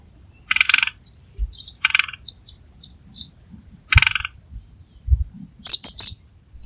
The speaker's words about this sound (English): That was the drumming sound made by yellow-crowned woodpecker.